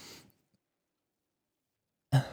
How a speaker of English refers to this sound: Are you okay? I had a nasty little burp there.